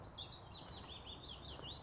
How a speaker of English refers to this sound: There you go. You can hear the birds. Almost quiet now.